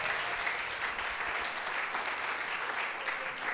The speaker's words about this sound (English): Come on, clap your hands and give Jesus praise.